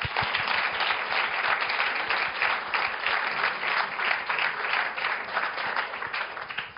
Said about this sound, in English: Okay, well, look, it just remains for me to say thank you very much to our five speakers. They've been amazing, sticking to the time and giving our attention, which is. So round of applause for all of our speakers.